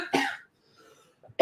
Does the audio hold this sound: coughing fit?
yes